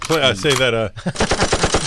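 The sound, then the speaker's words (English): A brief wavering, voice-like tone gives way to a loud, rapid burst of gunfire sound effect: dozens of sharp shots in quick, steady succession like an automatic weapon. “Do you have a gunshot sound?”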